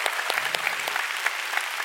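An audience claps for the Lord in steady, dense applause, many hands producing a continuous bright crackle with a few sharper individual claps standing out, holding an even loudness throughout.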